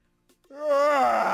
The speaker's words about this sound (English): You know, people yawn like that. Like, that's a good one. Like, it's not necessary. It's a bad one, but that's a good one. There are a lot of people who do that, the yawn yell.